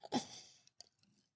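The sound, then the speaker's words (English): A quiet slurp as someone sips a drink, a short airy pull followed by a couple of soft mouth clicks and a faint swallow, with no talking. “Let me take a sip.”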